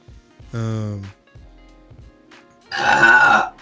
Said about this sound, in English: Damn. Well, back with the belch.